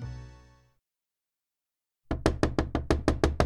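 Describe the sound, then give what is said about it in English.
A fading musical tone gives way to silence, then about eight loud knocks on a door land in a quick, steady rhythm. “A knock on the door startled Nadia awake.”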